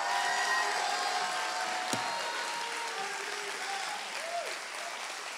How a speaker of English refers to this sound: If you believe that with me, take 15 seconds, clap your hands one more time, and give the Lord a mighty shout of praise.